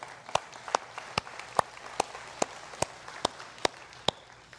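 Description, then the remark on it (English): An audience claps together in a steady, even rhythm, about ten sharp, loud claps roughly half a second apart over a soft background hiss. No one is talking. “See, hey, you can clap.”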